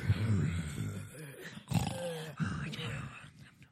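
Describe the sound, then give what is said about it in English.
A man's voice imitates the heavy, raspy breathing of an obscene phone call in a series of loud, rough huffs and low grunts lasting a few seconds, with no words. “He starts with some heavy breathing.”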